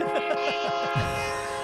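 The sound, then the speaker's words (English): A steady, droning train horn holds throughout while a quick rhythmic chugging pulses beneath it, like a train rolling along, moderately loud and with no one speaking. “A train-based ride.”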